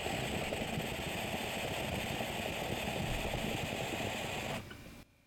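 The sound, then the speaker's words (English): A dab hit of GMO hash: a steady, rumbling hiss with a dense, bubbly low texture holds for about four and a half seconds, then drops away abruptly. No one speaks. “Let me take this dab real quick and then we'll just ramble more about what I want to do.”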